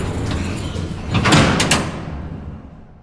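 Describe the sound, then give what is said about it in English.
A heavy door slides along its track with a rumbling rush, building to a loud, fast close around the middle before the sound fades out. No voices. “One last time, the door shuts fast behind you.”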